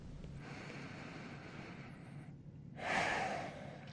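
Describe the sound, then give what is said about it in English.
A long, slow inhale followed by a brief pause, then a louder, forceful exhale, with no talking. “are you breathing there at home?”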